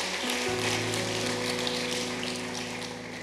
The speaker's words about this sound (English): Amen. Come on, you clap your hands. Isn't that great?